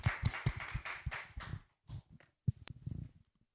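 A small live audience claps in a rhythmic burst for about a second and a half, then the applause thins into a few scattered, fading claps.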